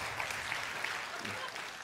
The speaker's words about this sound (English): That was, what kind of clap?